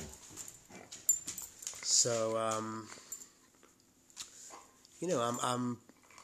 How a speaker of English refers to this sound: my dog is also Coco's putting some demands on me for attention. She probably needs me to save some strength to take her out.